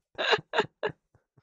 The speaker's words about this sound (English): Can't you see I'm making it hard enough on myself, birds? So much judgment. I'm not crazy. You're crazy. It's the birds. They're yelling at me about water bottles.